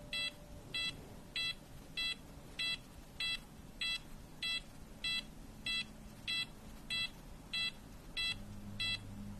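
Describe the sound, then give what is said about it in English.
A steady series of about fourteen short, high electronic beeps from a hospital checkup repeats at an even pace, clear, over a low background hum with no one speaking. “you will hear some beeping sounds. It's perfectly normal.”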